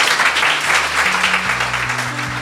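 A crowd claps steadily for a guest at the close of a startup interview event, a dense, sustained round of applause that holds at a fairly loud level throughout, with a faint low hum running underneath and no voices.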